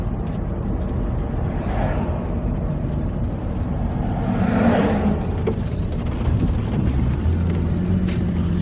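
A steady low engine rumble and road hum from a moving car, continuous throughout, with a brief swell midway as if passing something or accelerating.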